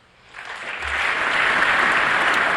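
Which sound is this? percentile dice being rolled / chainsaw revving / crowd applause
crowd applause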